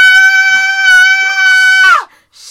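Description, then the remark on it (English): A loud, piercing human scream holds one high, steady pitch for almost two seconds, then cracks and slides downward before cutting off, followed by a brief quiet hiss. “that scream was so”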